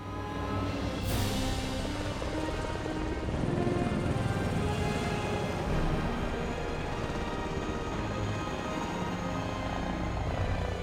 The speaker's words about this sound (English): So now the helicopter flies off.